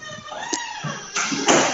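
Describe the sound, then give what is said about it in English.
A door squeaks loudly with a drawn-out, wavering high-pitched creak, then swings on with a louder, rough scraping rush of noise and a short thump near the end. “That was a door. loud door. I know, it's not usually that loud. It just like really squeaked this time.”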